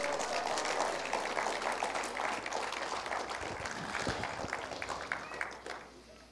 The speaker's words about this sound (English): Would you stand to your feet with me this morning? Praise God. Praise God. Can you just give the Lord a hand clap for the truth and power of His Word?